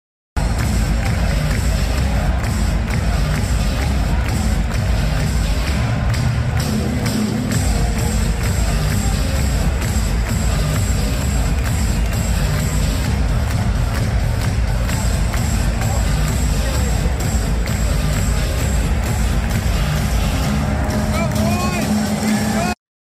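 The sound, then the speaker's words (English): A huge stadium crowd roars continuously at a record-attendance ASU football game, a loud, dense wall of cheering and voices that holds steady for the whole stretch without letting up. “I knew that the crowd was great, but it wasn't until I saw this video from our guy Res Devil that showed me just how electric the atmosphere was there.”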